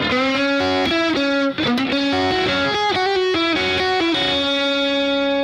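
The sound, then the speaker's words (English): A distorted electric guitar plays a quick, fluid lick of legato notes: the E string picked at the third fret, a hammer-on from six to three, then a pull-off to three on the B string, stepping up and down in pitch before ringing out on a sustained final note. No voices. “Pick the E string at the third fret. Hammer on six to three. Pull off to three on the B string.”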